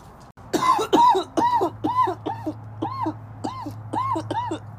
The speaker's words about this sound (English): No, you're just coughing as fuck. Yeah, because of weed?